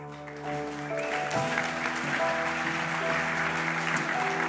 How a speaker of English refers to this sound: Just so we can see you, my brother that's clapping, would you two?